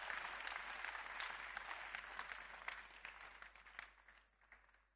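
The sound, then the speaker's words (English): An audience claps steadily during a Christian sermon on the obligations of Christians, a dense wash of many hands at a moderate level that thins and fades toward the end, with no voices over it. “Clap for obligations of Christians.”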